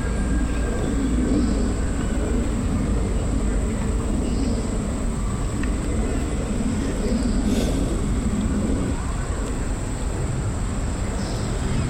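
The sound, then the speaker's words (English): A steady, broad roar of a jet aircraft passing high overhead, a constant low rumble that stays fairly loud and even throughout, with no distinct voices over it. “And a stupid jet.”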